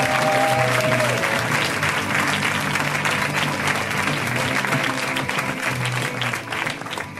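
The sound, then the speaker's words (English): A crowd applauds steadily and loudly for several seconds as comedian Jim Hamilton is introduced, a dense wash of clapping with faint whoops and crowd noise mixed in, holding strong before easing slightly at the end. “Let's hear it now for Mr. Jim Hamilton. Give it up for Jim.”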